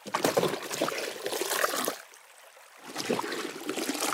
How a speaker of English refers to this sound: She dunked the buckets into the river to fill them up.